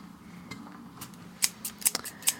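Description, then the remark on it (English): Large scissors snip several times in quick, uneven succession, each cut a sharp metallic crunch over a faint steady background hum. “Scissors. They're big, aren't they?”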